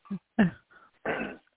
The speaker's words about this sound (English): Hopefully my voice holds up here. Excuse me, as a little cough is kicking in here.